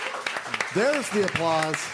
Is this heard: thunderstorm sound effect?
no